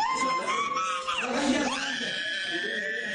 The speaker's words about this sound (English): In the hospital, one child begins to scream.